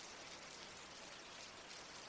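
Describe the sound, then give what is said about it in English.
Steady rain falls in a continuous, even hiss of fine drops, soft and unbroken for the whole stretch, with no voices or other sounds. “I tilt my head, flinching against the rain, to gaze up at the lampposts watching over me, making spotlights of the shadows.”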